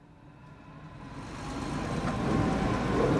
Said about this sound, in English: The road whizzed by outside of the truck window.